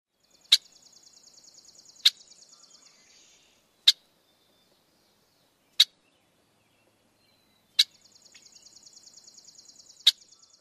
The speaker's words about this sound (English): Okay, let's break it down a little. Red-winged blackbirds have a chuck call that is reminiscent of other blackbird calls.